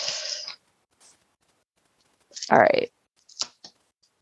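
Tarot cards are shuffled for a reading about Kim and Pete in a quick, papery riffle lasting half a second, followed by a brief vocal sound and a couple of soft taps as the deck settles.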